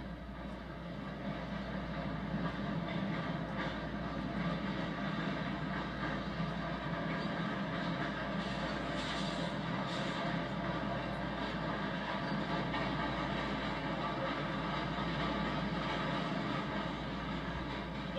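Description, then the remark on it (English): A long freight train rolls steadily past, its loud, continuous rumble and droning mechanical hum holding constant throughout with no voices. The cars are likely off the First Coast Railroad, loaded with finished kraft paper or container board paper. “These cars are likely off the First Coast Railroad, which runs from Yulee to Fernandina and caters to the pulp and container board mills on that island.”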